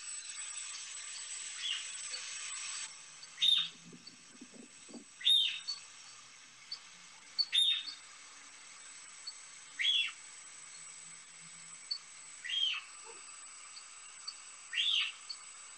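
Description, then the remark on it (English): A cougar gives a series of short, high, bird-like chirps, about one every two seconds, moving away a little so it sounds somewhat distant and thin over a steady background hiss. “This is going to be where the cat moves away a little bit. You'll still hear the chirping, but you'll hear it in the background more.”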